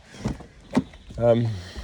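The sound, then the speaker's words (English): A couple of short clunks, then an electric car seat motor hums steadily as the seat slides back by itself, a low buzzing whir lasting about half a second, with some talking mixed in. The car is a family car that needs charging. “There goes the seat, actually, it's moving away all by itself.”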